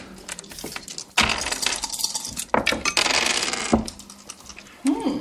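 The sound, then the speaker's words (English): Three six-sided dice clatter and tumble across a hard tabletop in a few bursts of rapid, bright clicks, fairly loud, with a short voice sound right at the end. “3d6 for POW.”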